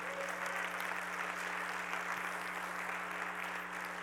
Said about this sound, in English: Come on, give the Lord a clap of praise today.